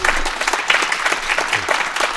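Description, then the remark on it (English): An audience breaks into steady applause for Ambassador Craig Allen, a dense wash of many hands clapping at a fairly loud, even level with no voices standing out. “Ladies and gentlemen, please, a round of applause for Ambassador Craig Allen.”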